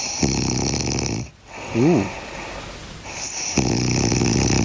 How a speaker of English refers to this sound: That is a pretty deep sort of snore. That sounds fairly familiar. That's what's close to your ear every night.